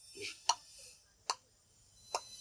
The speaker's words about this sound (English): And all I could hear, I had this stupid-ass clock on the wall. I could hear the clock ticking.